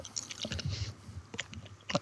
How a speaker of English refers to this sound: It tastes better than it smells. I concur. The more you chew Jelly Bellies, the more you get. Actually, it's not bad.